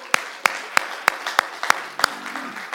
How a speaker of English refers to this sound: Clap your hands.